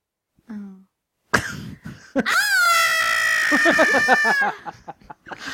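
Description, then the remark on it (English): A person imitates Kevin's scream from Home Alone, when he realises he's home alone: a short breathy lead-in, then a loud, sustained high-pitched vocal shriek lasting about two seconds, wavering slightly before breaking off into gasping, choppy bursts. “Okay, can you, just to finish off, can you do an impression of Kevin, you know, when he realises he's home alone, when he runs up to the camera?”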